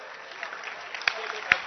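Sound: audience clapping hands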